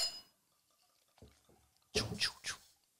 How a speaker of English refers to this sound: Give me like half what you poured yourself.